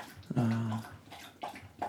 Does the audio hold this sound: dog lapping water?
yes